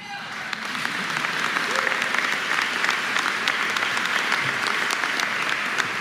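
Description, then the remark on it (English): A crowd applauds steadily for several seconds, dense clapping holding at an even, fairly loud level, with a few scattered cheers and whoops mixed into the noise. “In the words of President Obama, and I'm paraphrasing, don't cheer, vote.”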